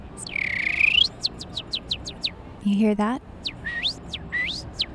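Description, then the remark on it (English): A sanitation worker in Bryant Park whistles a bird-like call while he works: one long rising swoop, then a quick run of sharp chirping notes and a few more slurred whistles, clear, with a brief spoken question midway. “It's a bird call. But it's actually a human making that sound.”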